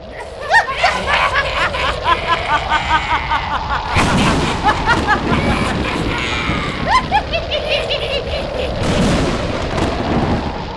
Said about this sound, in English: Suddenly, dark clouds appeared over the camp of the Guru. There was a loud thunder and crackling lightning as the forces of destruction were sent towards Guru Tegh Bahadur and the Sikhs.